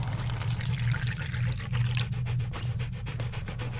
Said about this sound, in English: Ah, it's boiling. I'll fill up your mug.